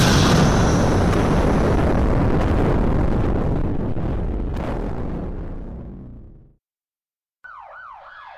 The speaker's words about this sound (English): A thunderous explosion. At least 14 sticks of dynamite shook the downtown district of Birmingham. The bomb had been placed beneath the church steps, only a few feet away from the four girls.